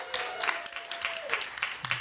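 An audience applauds, a dense, steady patter of many hands clapping at a moderate level for the full two seconds, with a faint sustained tone and a brief low voice-like sound underneath.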